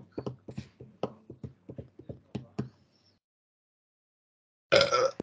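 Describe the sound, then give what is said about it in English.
A run of rhythmic hollow clip-clop knocks, a pause of silence, then one short, loud, rough burp bursts out at the end, during the game The Burp Show of Mini Ringer Games. “This is Mini Ringer Games, The Burp Show.”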